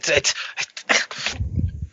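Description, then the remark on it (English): A woman growls like a dog, making a series of harsh, breathy snarling bursts that settle into a low, rumbling growl, fairly loud. “She was growling like a like a dog.”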